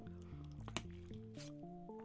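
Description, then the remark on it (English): A few wet gulps and swallowing sounds from a drink of water, with soft steady background music playing underneath. “Take a drink right now.”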